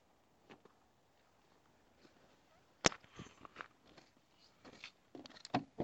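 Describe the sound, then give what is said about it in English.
Crinkly plastic rustling and crackling of a trash bag in irregular bursts, starting with a sharp snap, then louder clusters of crunching toward the end. “That's my super duper loud trash bag.”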